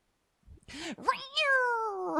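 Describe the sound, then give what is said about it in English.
Cats fighting: a sharp hiss gives way to rising, snarling yowls and then a long, drawn-out wailing meow, loud, with no talking. “Wow. Cat fight.”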